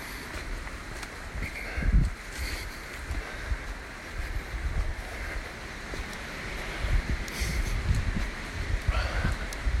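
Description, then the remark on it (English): Gusty wind buffets the microphone in steady low rumbles, with rustling and brief louder bursts throughout, an open outdoor roar with no voices, during a walk at a stile about to enter a large field. “So we'll see if it's just too windy to carry on, in which case I may have to restart later up the hill.”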